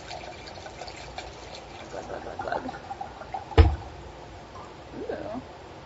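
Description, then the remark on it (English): Malvasia wine trickles steadily into a glass, the pitch of the pour rising as it fills, with a single sharp clink of glass partway through. “Should I pour it now?”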